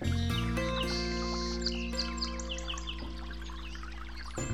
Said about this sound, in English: And yonder, in the deep shade of overhanging foliage and vines, a divine place for waiting. Sonically, we have the interplay between the brook itself and the bird song, and it's really an uplifting experience.